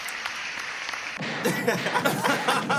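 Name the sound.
soundboard applause sound effect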